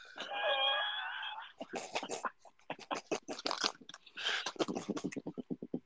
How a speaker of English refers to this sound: Nobody wants to hear that. What the fuck are you talking about? I'm talking about the gross sound that your mouth makes when you chew.